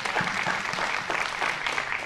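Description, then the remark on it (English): An audience gives God a hand clap of praise after a prayer, a steady, dense wash of hand claps that holds at an even level for about two seconds, no voices standing out above it. “If you believe that prayer this morning, give God a hand clap of praise today.”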